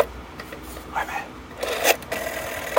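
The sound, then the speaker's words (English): A rotary phone dial being turned and released, giving a few short mechanical whirring, ratcheting bursts at an uneven pace. The sound is moderately soft, and no one speaks. “Tell me you got the rotary phone.”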